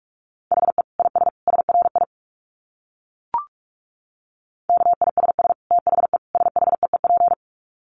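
Very fast Morse code at about 45 words per minute: a steady mid-pitched tone keyed into rapid dits and dahs, in two bursts separated by a pause with a single short click, and no talking.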